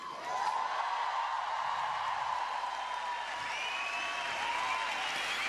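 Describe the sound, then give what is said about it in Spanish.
An audience at a stand-up comedy show applauds steadily for several seconds, a dense, even wash of clapping at constant loudness, with faint whoops or cheers rising through it. “La gente aplaudió.”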